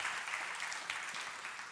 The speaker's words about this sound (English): Can you help me give our leadership a round of applause?